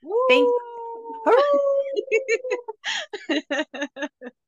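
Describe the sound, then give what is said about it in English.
Two long, rising howls from dogs held on a steady pitch, followed by a quick run of short yipping barks, fairly loud with brief gaps between them. “I have to be careful. I'll get the dogs going.”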